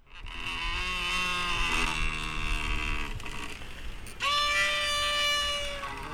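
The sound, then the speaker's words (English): A door squeaks in two long, drawn-out creaks, each a steady, reedy, whining tone lasting a couple of seconds, separated by a short pause, over a low background rumble. “It might just be a door squeaking over and over again, but I like it.”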